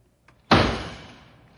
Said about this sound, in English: how many times must I tell you not to bang the door?